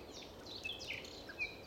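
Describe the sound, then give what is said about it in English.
A nightingale sings faintly in a forest at Dunwich Common, Suffolk, a few short, high whistled notes scattered over a soft, steady outdoor hush. “I'm standing in a forest in Suffolk, listening to a nightingale.”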